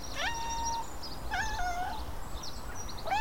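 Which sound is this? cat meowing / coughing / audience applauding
cat meowing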